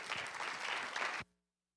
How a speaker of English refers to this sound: Give him a hand clap if you will.